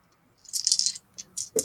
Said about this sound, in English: So roll four dice and add your quick score.